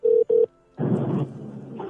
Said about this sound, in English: So let's see if I can get her on the phone. Give me one second.